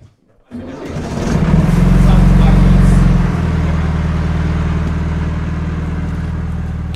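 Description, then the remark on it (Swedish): A motorboat engine starts up as a boat trip sets out, revs into a loud, deep roar, then eases back into a steady, throbbing idle that runs to the end. “Den båttur vi nu ger oss ut på brukar Tove och hennes livskamrat Tuulikki Pietilä göra många gånger varje sommar”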